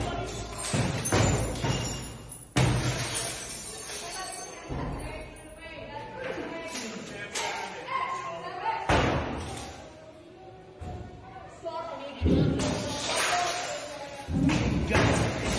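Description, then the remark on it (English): Windows being smashed by protesters: a series of heavy, irregular thuds and crashing bangs repeat over a steady din of crowd noise and indistinct voices, with several loud, sharp impacts standing out. “Listening along, that's windows being smashed from the mostly peaceful protesters.”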